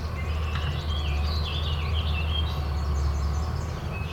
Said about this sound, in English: Yellow warbler.